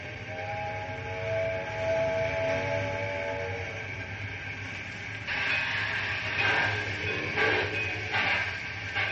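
A steam train's whistle sounds a sustained, layered tone, then fades as loud bursts of hissing steam and heavy rhythmic chuffing take over while the locomotive starts moving.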